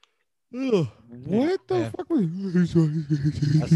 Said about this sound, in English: I was yawning.